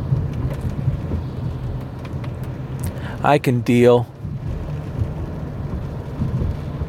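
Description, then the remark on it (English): Steady rain hisses across the whole recording over a low rumbling hum, with a brief spoken phrase from a voice partway through. “Well, today is tomorrow and it's raining.”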